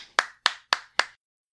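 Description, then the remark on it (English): Four crisp hand claps in a steady, even rhythm, each a sharp bright smack with a quick decay, then silence. Hands clap together with no talking. “Let's all give a big hand to our claps, everyone.”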